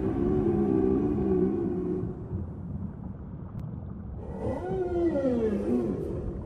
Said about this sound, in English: And we did sort of random sampling, acoustic sampling for 20 minutes at a time, usually a couple of times a day, to try and get different samples of what the whales are singing this particular season in the codex.